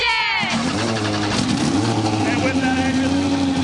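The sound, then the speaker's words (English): Several Indy Lights Series race car engines fire up at once at the Indy Lights Grand Prix of Monterey, WeatherTech Raceway Laguna Seca, and settle into a loud, layered, buzzing idle, their overlapping tones droning steadily. “It is time to fire the engines for the Indy Lights Series presented by Cooper Tires.”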